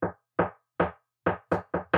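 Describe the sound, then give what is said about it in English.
Seven sharp, loud knocks on wood, at first evenly spaced and then coming faster toward the end, with no voices or other sounds between them. “All right, I'm going to knock on wood like 10 times in a row just for this whole conversation.”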